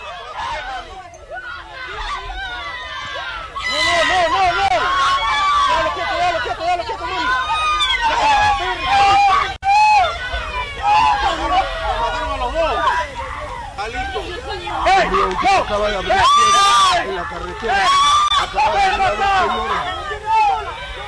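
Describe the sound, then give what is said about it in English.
High-pitched women's voices shriek and cry out repeatedly over a loud, dense crowd commotion, with overlapping shouting and chatter continuing throughout. “These shrieking ladies may be thinking twice.”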